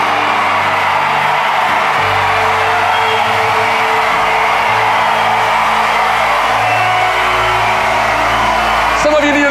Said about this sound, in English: To have somebody cheering you on.